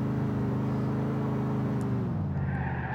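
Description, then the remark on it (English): A video game car engine roars steadily, its droning pitch shifting and dropping partway through as it revs, with a faint tire squeal and no voices. “I have a feeling somebody messed with the suspension on this car because it does not feel right.”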